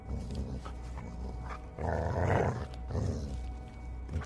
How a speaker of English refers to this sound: his ears perked up as he looked in one direction, away from the coast. And then, as if startled, He looked in another direction, and then another, flinching every time. Then I watched as the hair over his spine stood on end, and he started to growl.